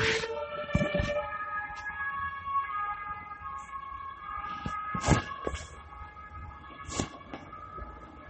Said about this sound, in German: eben die Sirene abwarten.